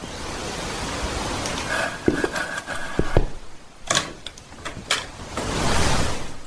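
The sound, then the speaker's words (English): A door is opened with a brief creak and a handful of sharp knocks and clunks from the latch and handle, over a steady background hiss, with no talking. “can you get the door?”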